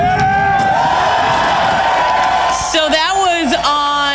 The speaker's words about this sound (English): Sunday, he celebrated his 365th jump into Lake Michigan, and a giant crowd came down to cheer him on.